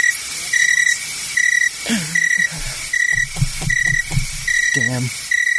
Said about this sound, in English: Damn. Fucking crickets. That's the reaction I get. Jeez, nothing.